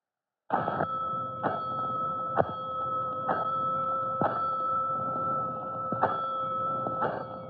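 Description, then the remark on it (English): A loud fire station alarm bell clangs repeatedly at a steady pace, sounding five bells for a five-alarm fire, each strike ringing on into a sustained metallic tone that hangs between hits, with no voices. “Five bells, stand by all stations.”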